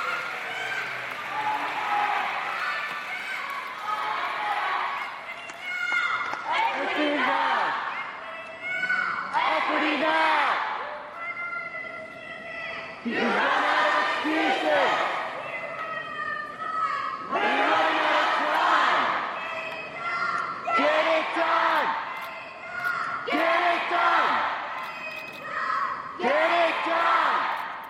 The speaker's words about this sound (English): she moved to the side of the podium, off microphone, and in a manner familiar to anyone who's attended an Occupy protest, shouted into the vast hall of staid diplomats. A crowd of young students stood up, and the call and response began.